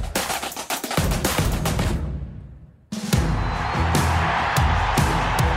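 A loud football stadium crowd roars and cheers in a dense wash of noise as Sam Kerr scores the tie-breaking goal with seconds left, fading briefly midway before surging back at full volume, with sharp claps or bangs punctuating the din.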